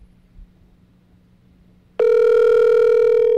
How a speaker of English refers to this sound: Dude, if your mom doesn't answer your phone call, it's embarrassing.